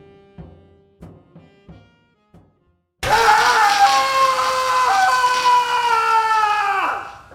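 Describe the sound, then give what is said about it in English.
A few short, low groaning bursts give way to a man's loud, sustained scream that holds for about four seconds before his voice breaks and drops off at the end. “Yeah, that screaming idiot's me.”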